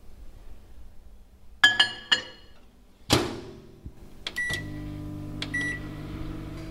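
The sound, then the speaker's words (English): A microwave oven's keypad beeps a few times, a door thumps shut, then the oven starts up with a steady low hum while a couple more short beeps sound. It is melting chopped chocolate and butter in a bowl for 30 seconds. “I'm just going to put that in a bowl together with the butter and just pop them into a microwave.”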